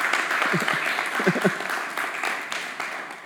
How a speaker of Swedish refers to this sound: Nu har vi ett fantastiskt vackert nyrenoverat fikarum. Det är värt en applåd, ja. Det är många som har slitit med det.